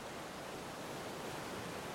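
A steady, soft rush of ocean surf on a beach, a continuous hissing wash with no distinct individual wave crash, fairly quiet and even throughout, with no voices.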